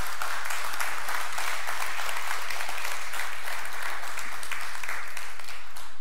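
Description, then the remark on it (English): A crowd applauds steadily for several seconds, a dense wash of many hands clapping at once, fairly loud and continuous with no speech over it. “You've got a hand clap.”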